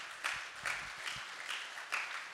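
An audience claps in a steady crowd of applause, many hands blending into a dense wash with a few sharper individual claps standing out. No one speaks over it.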